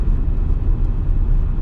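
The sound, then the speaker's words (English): Steady low rumble of a car cruising on a highway, with continuous road and engine noise filling the low end and no talking. “It is not much effort for my car to go.”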